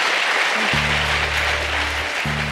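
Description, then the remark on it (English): A large audience in Atlanta gives Sally Yates a standing ovation at the final show of the 2019 Stay Tuned live tour: dense, sustained applause, steady and loud throughout, with low droning musical tones rising beneath it partway through. “They're standing again. It's for you.”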